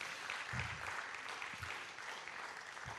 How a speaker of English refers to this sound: Come on, if you believe that, can you give the Lord a good round of applause?